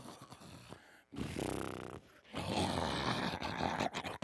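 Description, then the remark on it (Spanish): A voice mimics people snoring in their sleep during a late-night church vigil: two long, rough, rattling snores with harmonic buzzing, separated by a brief pause, sustained and strong throughout, with no ordinary talk. “Estaban las personas roncando.”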